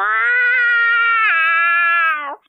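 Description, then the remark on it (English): A person imitates an angry cat that has brought in a dead animal, with one loud, drawn-out yowl that holds steady, drops in pitch partway through, then cuts off, with no other sounds. “I do have an angry cat noise for I brought a dead animal in for you, or maybe a live noise.”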